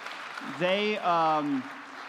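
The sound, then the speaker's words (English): A crowd claps steadily in a dense, even wash of applause for the band at a worship service, with a voiced cheer or whoop rising over it for about a second in the middle. “And also, if you guys wouldn't mind giving the band a round of applause as well.”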